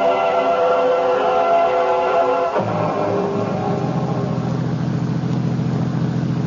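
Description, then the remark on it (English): A limousine engine purrs steadily with a smooth, tonal hum, then drops into a lower, rougher rumble partway through as the car, sent by the Stokelys for a pickup at Dulles Airport, keeps rolling along the road west toward Winchester. No one speaks. “I was still fuming, even after the limousine with Stokelys had sent to pick me up at Dulles Airport was purring along the road west toward Winchester.”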